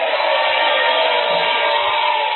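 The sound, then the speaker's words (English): An audience cheers during a sermon in a steady, dense roar of many voices, loud and continuous throughout with no single speaker standing out. “When they are cheering me, you are saying we are too happy. We are too excited.”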